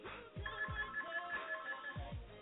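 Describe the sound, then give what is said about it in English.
A phone rings faintly in the background, its electronic tone repeating in quick pulses, with a few soft low thumps underneath and no one speaking. “I heard a phone number ring in the background.”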